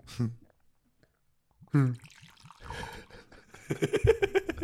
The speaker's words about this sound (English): I love that sound you just made. I guess I'm pleased yourself. I was very pleased. It was a nice pour. Yeah, because normally we're complaining how much like over pour, under pour.